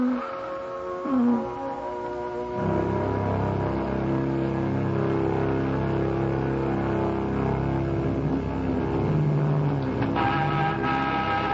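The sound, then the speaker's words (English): A sports car engine idles with a low, steady hum, then rises into a louder, throaty rumble that holds with shifting pitch, no voices over it. “Well, you still have the sports car. Get in.”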